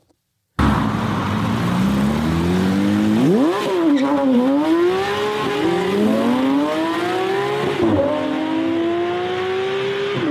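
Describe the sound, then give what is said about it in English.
A car engine revs hard, its pitch climbing and dropping through several gear shifts, with tires squealing along the way; loud and continuous for about ten seconds, no voices. It is not a Ford Pinto. “I just thought it'd be fun to throw in some real great car music there to get us kind of thinking about it.”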